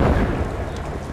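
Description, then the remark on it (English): A loud, deep explosion at a destroyed giant anthill nest fills the air with smoke and sand, rumbling with a dense, roaring low-end boom that holds steady for about a second without fading much. No voices are heard. “Not much for the army to clean up after this, he said proudly as a final explosion filled the air around us with smoke and sand.”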